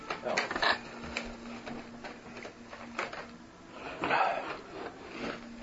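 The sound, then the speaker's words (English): Big wooden dice clatter and tumble across a table in a few loud, rattling bursts, with knocking and rolling in between, heard on their own. “Big wooden dice.”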